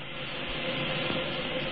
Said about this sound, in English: A powerful laser drill operating through the conning tower cuts a hole straight up through the ice, through which the captain climbs and steps out into the snow-covered streets of the tiny sleeping village above.